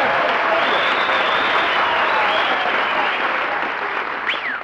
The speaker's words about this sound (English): did you hear that ovation, Mary? Applause, cheers, whistles?